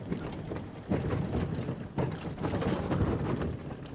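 A bicycle towing a steel-frame trailer rolls along with a steady low rumble and loose mechanical rattling, clattering bursts swelling every second or so, with no voices.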